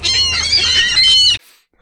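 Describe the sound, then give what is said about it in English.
A single loud seagull squawk, harsh and high-pitched with a wavering, raspy tone, holding for over a second before cutting off abruptly into near silence. “You just got yourself a seagull squawk.”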